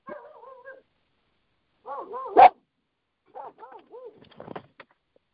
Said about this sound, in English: Sorry, dog freak out.